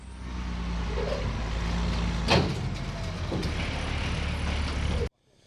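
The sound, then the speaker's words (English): A heavy truck engine roars loudly and steadily as Cody Pulliam's truck, the second to last truck of the event, gets underway; a deep sustained rumble with a sharp clank partway through, before the sound cuts off abruptly near the end. “Cody Pulliam getting underway here. This is second to last truck of the event.”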